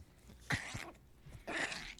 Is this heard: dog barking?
yes